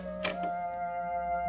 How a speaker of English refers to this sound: I walked up the stairs, took out my key, opened the door.